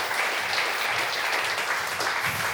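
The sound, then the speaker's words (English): A crowd claps steadily for children as they head back to the kids' area, a dense, continuous wash of applause with no breaks, moderately loud throughout the short stretch. “You can give them a clap while they head back to the kids' area.”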